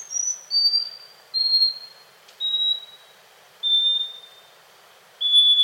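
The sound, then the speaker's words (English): A scaly-breasted wren sings a series of six pure, high whistled notes, each held briefly and stepping slightly lower in pitch, with the pauses between them growing longer. No voices are heard. “But by analyzing song recordings, researchers found that scaly-breasted wrens can precisely measure out pauses and whistle just in time, even as the pauses increase to several seconds.”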